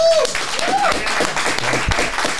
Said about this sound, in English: Go on and give us a round of applause. Come on.